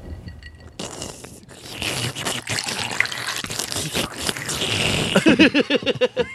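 A drink is poured steadily for several seconds, a continuous splashing hiss of liquid filling a glass, followed by a brief hum of a voice at the end.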